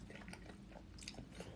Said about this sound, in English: … says, chew a little louder. It's so annoying.